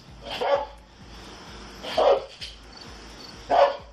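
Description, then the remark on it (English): A dog barks three times at steady intervals of about a second and a half, each bark sharp, with a low rumbling background in between. “That dog's gonna bite you if you don't come out.”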